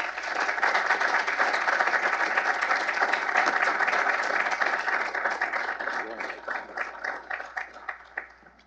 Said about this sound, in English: It is an exceedingly rare event for me to receive applause in this particular town. So it's maybe the only place that ever happens here, and I'm fine with that.